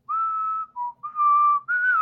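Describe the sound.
A person whistles the Green Ranger whistle tune from the TV show Power Rangers: a long held note, a brief lower one, another long note, then a rising higher note, with no talking.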